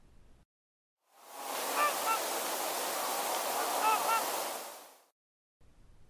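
Trumpeter swans give deep, honking barks in two short clusters of calls, partly blending into a steady rushing wash of water or wind that fades in and out.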